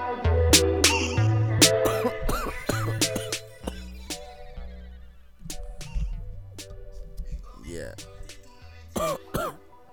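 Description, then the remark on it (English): A series of harsh coughs and throat-clearing bursts comes in uneven fits over about ten seconds, mixed with a steady tonal background, with a final pair of coughs near the end. “Damn cough, man.”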